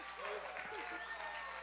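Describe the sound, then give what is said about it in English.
An audience in Alaska claps steadily and continuously, a dense, even wash of applause with a few voices calling out underneath, holding at the same moderate level the whole time. “Give Jesus a big hand clap again all over this place for all that he's done and all that he's going to do.”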